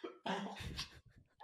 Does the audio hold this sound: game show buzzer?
no